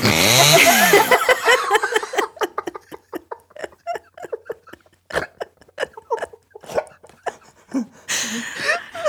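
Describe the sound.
A voice imitates a chainsaw, opening with a loud, buzzy revving roar that breaks into choppy, sputtering bursts and broken vocal noises, then ends with a short breathy rasp.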